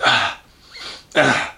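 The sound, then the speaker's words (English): Someone imitates a woman's heavy mouth breathing: two loud, harsh breaths with a quieter, wheezy inhale between them, no words spoken. “Mouth breathing. Oh, no, I fucking hate mouth breathers. Doing this.”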